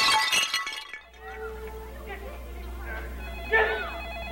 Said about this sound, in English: And it includes the my favorite stock sound effect of a vase breaking.